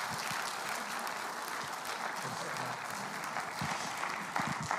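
Sustained applause from an audience at Mount Pleasant welcoming a guest speaker, a dense steady crackle of many hands clapping at a fairly even loudness for about five seconds, with no talking over it.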